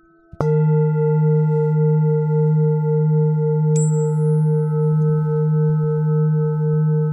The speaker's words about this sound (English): Those beautiful chimes wake up my ears, and I feel my heart open, and it hears them too.